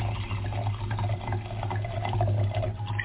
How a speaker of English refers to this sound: We have somehow compelling blue liquid, which sounds crazy, right? It does. Do I want to drink this blue thing? But I'm dying to see what this looks like when it comes out of the bottle into the glass.